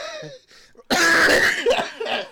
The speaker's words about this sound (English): been coughing